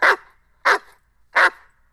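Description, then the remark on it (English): A dog barks three times in quick, evenly spaced succession, each bark short and sharp, with quiet gaps between and no one talking. “You know, bad dog, get out of here.”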